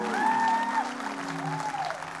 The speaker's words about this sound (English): Let's give our pastor another big 70th happy birthday applause.